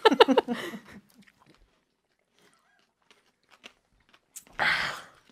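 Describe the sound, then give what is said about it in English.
Someone bites into and chews a whole jalapeno pepper: a loud burst of crunching at the start, scattered soft wet clicks through a quiet stretch, then another brief crunchy chew near the end. “What was easier, the whiskey or the jalapeno?”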